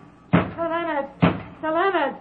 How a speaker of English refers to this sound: Sir Leonard, open this door. Who knocks?